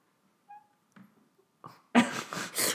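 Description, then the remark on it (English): A dog gnaws at her own foot, with a faint brief whine early on, then loud, wet chewing and licking bursts in quick succession. No one speaks. “She's just chewing on her foot.”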